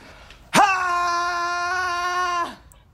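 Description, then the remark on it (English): A person screams as loud as they can, one loud, sustained scream lasting about two seconds, starting abruptly, holding a steady high pitch at full force, then cutting off. “Were you screaming? Yes, as loud as I could.”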